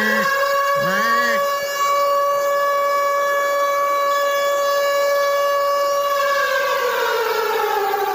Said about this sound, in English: that monthly 11 a.m. full-on siren check to get everybody ready for what is known as Severe Weather Awareness Week.